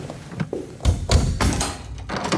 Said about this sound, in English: Laundry room door open.